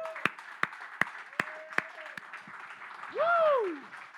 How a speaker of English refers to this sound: If you believe it, can you stand up and give Jesus a hand clap of praise? Come on.